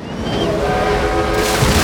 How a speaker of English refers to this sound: A super-fast engine sped past Thomas, squashing all the coconuts.